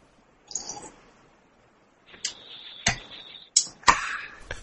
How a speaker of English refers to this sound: Well, I tried to slurp a little bit, but I mean, I don't think that's going to come across very well over the mic, but I don't know, we'll see.